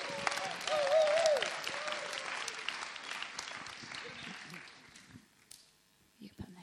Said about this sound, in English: let's give him a really warm round of applause as he comes up.